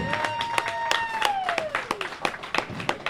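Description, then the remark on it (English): An audience applauds with a steady patter of many hands clapping, sharp claps popping out irregularly, while a long whistle-like tone glides downward over the first two seconds. “Big round of applause.”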